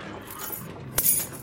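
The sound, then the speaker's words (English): A quick, bright metallic jingle of keys, a single short burst, ringing faintly for a moment against a low, muffled background. “Keys.”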